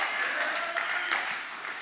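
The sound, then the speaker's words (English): Sustained applause from a crowd giving Jesus a hand clap, a dense wash of many hands clapping at once, steady and fairly loud with no voices on top, easing slightly toward the end. “If you believe that this morning, can we give Jesus a great big hand clap?”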